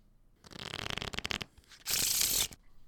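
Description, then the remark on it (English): A deck of playing cards is riffled with a quick burst of crisp flutter, then a short, dense cascading whoosh as the cards bridge back together, clear with no talking. “Shuffle it, draw it, play it.”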